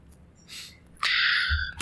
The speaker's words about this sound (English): Stop breathing your fucking mic. That's going to be in the recording.